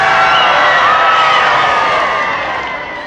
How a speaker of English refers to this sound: And that was the result, an outburst by the crowd.